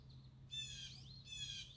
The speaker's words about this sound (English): I hear more birds coming in, got some crows, not the prettiest sound in the world, but God made all of these different birds.